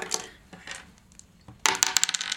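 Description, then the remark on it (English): A few scattered hard clicks, then a sudden burst of rapid rattling taps as dice are rolled in a tabletop roleplaying game and tumble and clatter across a hard surface, coming up boxcars, bright and percussive, with no voices. “Hey! Boxcars, again!”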